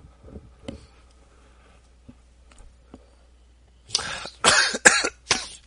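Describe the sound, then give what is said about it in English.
After a few quiet ticks and faint sounds, a burst of four harsh, loud coughs from someone laughing comes in quick succession, broad and rasping, with no talking. “Sorry, coughing but laughing, you know.”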